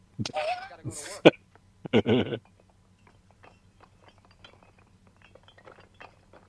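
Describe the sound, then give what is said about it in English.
Toy bricks clink and clatter: a few loud, sharp knocks and vocal-sounding bursts early on, then a long run of faint, irregular little clicks and taps. “I love the brick noises, though.”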